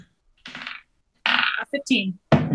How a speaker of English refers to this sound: Just to let you guys know, what happened there is Zuko knocked over my bowl of popcorn that immediately fell into my chair.